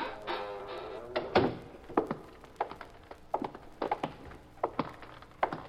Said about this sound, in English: Walk into that warehouse. Go on. The side door is open. Push it and go on in. All right, shut the door and walk down to the far end.